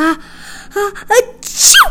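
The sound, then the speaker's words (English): A single loud sneeze: a few rising, voiced "ah" intakes build up, then a sharp, bright burst of air ends it. No one speaks. “Sneezing with your eyes open is impossible.”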